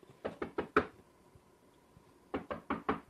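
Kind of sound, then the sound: impact, knocking on a surface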